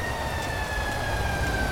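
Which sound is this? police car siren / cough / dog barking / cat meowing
police car siren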